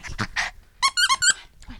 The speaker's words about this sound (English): In the living room of this Covina townhome, a Chihuahua Terrier mix is playing a fierce game of tug-of-war with her favorite chew toy.